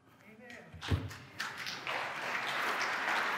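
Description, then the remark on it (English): An audience breaks into applause after a dull thump, the clapping swelling from scattered hands into a steady, dense wash of sound that holds to the end, with faint crowd voices mixed in. “Don't applaud.”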